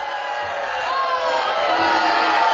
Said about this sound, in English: And now the show, see, I'm concerned the show is going to be called racist now, because it only boos the black guys when they're sitting there begging for cheers.